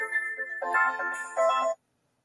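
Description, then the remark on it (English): A melodic phone ringtone plays at moderate volume for under two seconds, a few bright stepped notes, then cuts off abruptly into silence as the call is declined. “I declined it while you're still ringing.”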